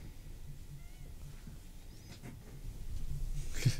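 Faint, thin whistling squeaks come from someone's throat, sounding much like a cat's meow. A few brief high-pitched tones drift over a low rumble, ending in a louder breathy rush.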